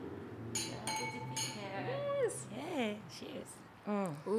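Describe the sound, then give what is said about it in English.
A few quick, bright clinks of wine glasses holding a 2019 Barbera d'Asti from Northern Italy ring out in the first second and a half in a toast, followed by voices talking and exclaiming over the fading ring. “There we go. Beautiful. Cheers, guys. Cheers.”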